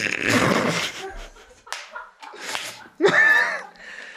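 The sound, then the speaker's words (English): Several loud, sharp slaps land one after another, a few crisp smacks with short gaps between them, bright with a fleshy snap to each hit. “Bang! Slapping his bare... bare butt, balls and back.”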